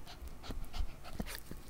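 A female dog, Kenny, sniffs in quick, breathy bursts, a series of short airy snuffles with soft low thumps, steady and fairly loud with no voices.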